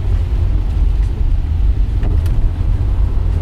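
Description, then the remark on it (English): A car drives in the rain in dense morning traffic, with a steady, heavy low engine and road rumble under a soft wash of hiss. A couple of faint, brief swishes are the windshield wipers. No one speaks. “You may hear some of the rain. You may hear the occasional windshield wiper.”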